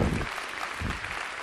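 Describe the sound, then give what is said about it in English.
An audience applauds, a dense, steady wash of many hands clapping with a few low thumps underneath, sustained at an even level throughout without any voices standing out. “And as you clap, I pray to God that that is all to Him and to Him alone.”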